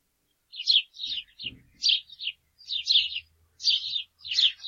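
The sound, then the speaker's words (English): A house sparrow chirps repeatedly in quick bursts of bright, buzzy notes at a steady, busy rhythm, clear, with a faint low thump or rustle in the background. “This is a house sparrow.”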